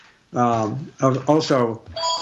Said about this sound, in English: I also, excuse me just for a second. Here, we got a phone ringing. Okay, there it goes.